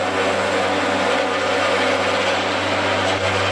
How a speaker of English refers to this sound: I like that we're crossing our third cable car of the day right here. Get some good cable car sounds. So this is your cable car.